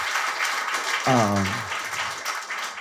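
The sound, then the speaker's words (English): A crowd applauds the event's volunteers steadily throughout, a dense wash of clapping, with a brief vocal cheer or whoop rising out of it partway through. “Just a huge round of applause for them.”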